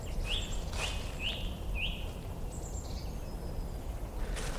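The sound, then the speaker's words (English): A song thrush sings in trees in Monmouthshire countryside in the cold time of year, repeating a short rising phrase three times before switching to thinner whistled notes, over a steady low outdoor rumble. “Just the song thrush there, beginning its soundtrack.”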